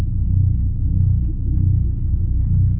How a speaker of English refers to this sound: both have a sound of a pulse coming from the center of the galaxy